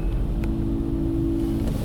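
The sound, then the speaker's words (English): Inside a car wash, a steady low mechanical drone and hum fill the space, continuous and fairly loud, with a faint brief click partway through and no talking. “now I'm sitting in a car wash with a guy clipping his fingernails”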